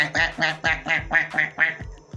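A duck quacks about seven times in quick, steady succession, loud, each call a short nasal burst, with the last couple trailing off fainter.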